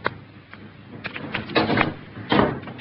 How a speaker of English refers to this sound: You may go, Kate, and close the door.